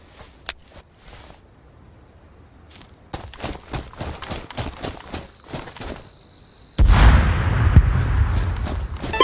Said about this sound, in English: So then he modifies it. Okay. He's trying to see if he can stack the explosion up.